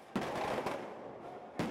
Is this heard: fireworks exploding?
yes